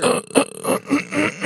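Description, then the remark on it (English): Someone clears their throat loudly into a microphone, a rough, raspy series of four or five quick guttural bursts with no speech. “let me clear my throat real quick. I'm going to do it into the microphone.”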